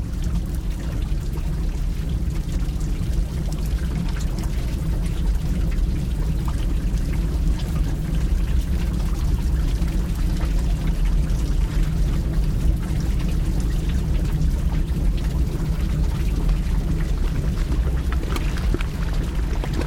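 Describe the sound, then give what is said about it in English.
Thick bubbling volcanic mud pots in Rincón de la Vieja National Park, northwest Costa Rica, churn and gurgle steadily, a dense low rumble dotted with wet pops and plops, continuous and fairly loud with no voices. “The lush forests of Rincón de la Vieja National Park brim with volcanic activity, including bubbling mud pots and steaming vents and a boiling lake.”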